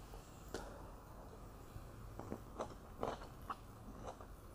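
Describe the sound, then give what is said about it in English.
Biting and chewing of fresh cherries that still have their seeds, with a series of soft wet crunches and squelches spaced irregularly across a few seconds, no talking. “These are the cherries, right? They're super delicious.”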